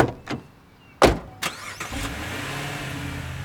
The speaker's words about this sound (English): we put her in the car and commenced to drive back to Beloit.